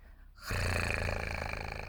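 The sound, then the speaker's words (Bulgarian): After a brief quiet moment, a clock's raspy, wheezing whir kicks in abruptly and drones on steadily at a fairly loud level, with no voices alongside it. “И часовникът все повече хъркаше и ясно казваше.”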